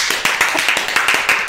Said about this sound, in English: Our first guest. Hit applause!